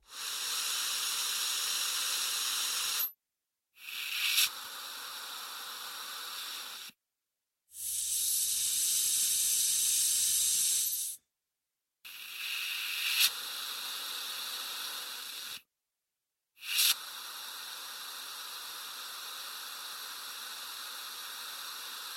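Steady, loud pressurized hissing from a spray whipped cream bottle releasing air under pressure, used by composer Hans Schüttler to imitate scuba equipment, comes in five long bursts of several seconds each, separated by brief silences, with no voices.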